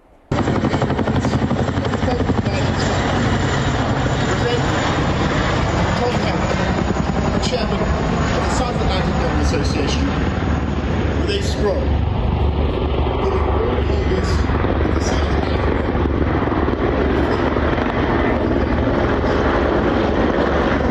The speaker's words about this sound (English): In his speech, there was a rather mistimed flyby of helicopters, which rather ruined the end of his speech. This is how that unfolded.